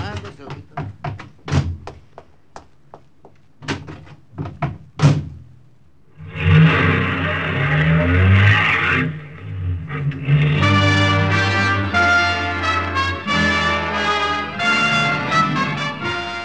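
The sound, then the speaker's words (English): A series of sharp thunks, like a car door shutting, followed by a loud rush of engine noise as a car parked in front of a tavern in Sturzo pulls away, then music swells in. “The car that Guido had commandeered for his use in Sturzo was parked in front of the tavern.”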